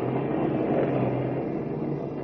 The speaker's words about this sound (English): And as we join them now, Lois and Horn in Kent's car are laboriously climbing up and down the winding mountain road, fighting their way through a heavy rainstorm.